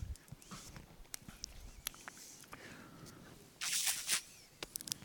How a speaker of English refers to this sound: Wow, I was trying not to cough into the microphone, but drinking into the microphone is worse, isn't it? Ooh, I apologize.